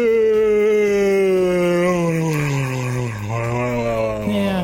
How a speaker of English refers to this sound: I was... had to yawn for a little bit.